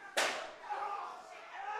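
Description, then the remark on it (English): A single loud, sharp slam of a wrestler's leg drop onto a wrestling ring, with a crack that fades quickly into a lingering wash of noisy background din. “Oh, big slam in the ring. Meanwhile, in the ring, TDT and Snooty Fox going to work. Huge leg drop.”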